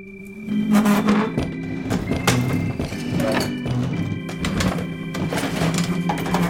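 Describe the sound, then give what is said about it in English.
Chairs scrape, clatter and thump across a floor as an audience rotates them to face a podium at the back, a steady, busy jumble of knocks and drags, with a low droning hum running beneath. No one speaks. “Mr. Crayon, please play the chair moving”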